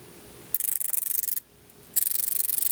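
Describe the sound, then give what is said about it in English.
An Orbit Reader electronic display makes a raspy, high-pitched chattering noise while refreshing, in two bursts of rapid pulses separated by a brief quiet gap, moderately loud with no talking. “When it refreshes, it does make some noise.”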